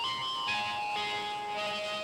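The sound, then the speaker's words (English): A mobile phone rings with an electronic melodic tone, its bright notes shifting in pitch about every half second in a steady jingle-like pattern, with no voices over it. “Oh, what's that? Oh, it's just my phone.”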